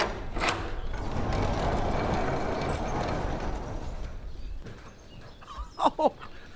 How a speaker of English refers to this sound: Our safe missed the sound of cattle in the yard. So I put up a tape recorder and now a couple of old hi-fi speakers I had in there.